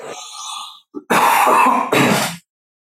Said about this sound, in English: Yeah, I don't turn the mute button on. I want you to hear my crazy cancer cough.